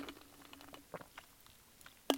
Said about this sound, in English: So, all right, let me get a sip of my Energize here. Hang on.